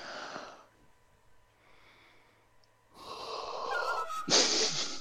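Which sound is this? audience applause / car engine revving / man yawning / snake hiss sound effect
man yawning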